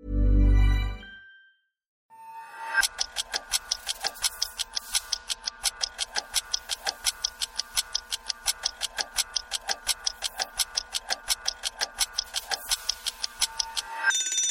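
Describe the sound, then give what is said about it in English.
A brief low thump, a pause, then a steady, fast mechanical ticking that runs evenly for about twelve seconds, fairly loud, like a wind-up kitchen timer counting down, set to 15 minutes. “15 minutes on the timer”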